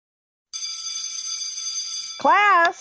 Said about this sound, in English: if you want to go ahead and ring the bell. Here we go.